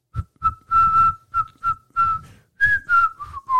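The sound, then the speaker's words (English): A person whistles a short melody imitating a theme tune, in a series of clear, bright notes, some clipped and some held, with a few slides between pitches. The whistle is fairly loud, with no talking. “So whistling.”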